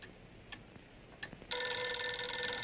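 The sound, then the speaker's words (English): After a few faint clicks, Cookie O'Neill's telephone bell suddenly starts ringing during Wimbledon, loud and continuous, a bright metallic jangle that keeps going without pause to the end. “Every year with Wimbledon, Cookie O'Neill's phone would not stop ringing.”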